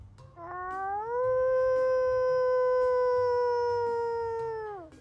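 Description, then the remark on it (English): A human voice imitates a wolf howl: one long, loud call that slides upward, holds a steady pitch for about four seconds, then drops away, over faint low background noise. “I am a wolf.”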